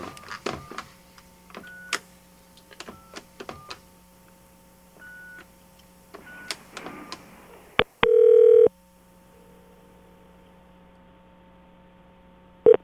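A phone dials a number with a quick run of short beeping tones over a steady hum, then a single loud ring tone sounds and the line clicks open.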